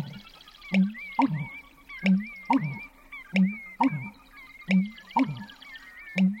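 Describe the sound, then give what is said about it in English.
A marsh bird's pumping call, recorded at first light from a canoe in the marsh: deep, resonant gulping booms repeat in a steady rhythm, roughly every second, with sharp clicks and faint high chirps of other birds behind them and no talking. “And when it started getting light, he really started pumping, and I got this fabulous recording.”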